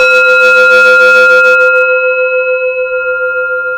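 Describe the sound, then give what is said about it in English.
A single gong stroke opens with a loud shimmering crash, then settles into steady ringing tones that hum on and slowly fade, with no voices present. “All right, bang your gong.”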